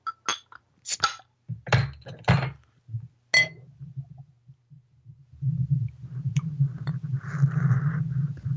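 A bottle of Captain's Holiday beer from Schmaltz Brewing is pried open with a USS Enterprise NCC 1701 bottle opener: several sharp clinks and taps of metal on glass, followed by a steady low fizzing and gurgling rush that builds toward the end.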